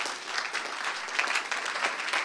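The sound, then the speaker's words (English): A large audience claps in a dense, sustained burst of applause to the Lord during a sermon, lasting a couple of seconds, with steady fast overlapping claps and no voices standing out. “Give a clap of you unto the Lord.”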